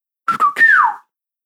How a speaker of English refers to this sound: Oh, that's the whistle.